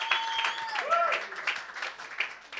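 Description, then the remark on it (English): An audience claps in a dense, steady patter of many hands that runs the whole time without fading, while a voice briefly rises above the applause early on. “I don't like this clap hiç at all.”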